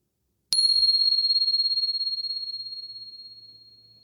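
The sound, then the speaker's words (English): A meditation bell is struck once, giving a clear, high, pure tone that rings on and slowly fades with a gentle wavering shimmer. It sounds alone, with no voices. “And here comes the bell.”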